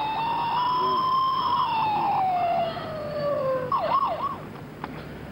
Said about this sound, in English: So what am I going to do? Well, let me just quickly put on my siren.